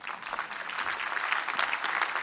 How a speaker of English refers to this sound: So it certainly does deserve a round of applause.